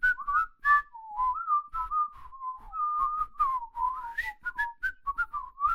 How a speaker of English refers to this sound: Talk about theme. Go ahead. You whistle your theme. I'll whistle my theme. It'll sound terrible on the podcast.